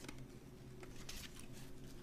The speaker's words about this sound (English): Sorry, I'm chewing a throat lozenge. I know that's very bad form.